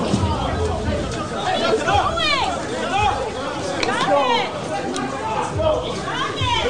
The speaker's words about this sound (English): This is the crowd. They're really entangled. Security guards trying to get him, and then it moves over.